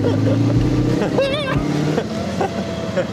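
A 1930s car engine roars under full throttle, its droning pitch climbing and wavering as it accelerates, with loud, steady road noise and a brief indistinct shout over the top.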